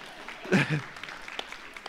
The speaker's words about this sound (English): You can clap. That's fine. That's a good clapping point.